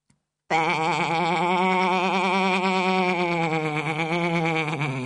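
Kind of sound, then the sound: vocal imitation, voice imitating sheep bleating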